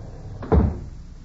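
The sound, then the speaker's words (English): The front door of John Miller's log cabin trading post in the Alaskan village of Rutland swings open with a single short thud and rattle, moderately loud, followed by a quiet hush. No one speaks. “Suddenly, the front door swings open.”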